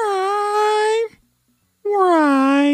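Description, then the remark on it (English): A human voice imitating a cat's meow, played in reverse: two loud, drawn-out, nasal wailing tones separated by a brief silence. “gave us this for his kitty cat meow”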